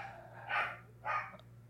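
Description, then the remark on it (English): Two short, muffled dog barks about half a second apart, fairly quiet, over a low steady electrical hum with no one talking. “These dogs.”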